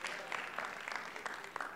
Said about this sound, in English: Give Jesus another big hand clap.